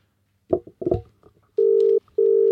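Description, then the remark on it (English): A telephone ringback tone sounds loud in two short, steady electronic bursts with a brief pause between, following a few soft handling clicks and bumps, as an outgoing phone call is placed. “It's ringing.”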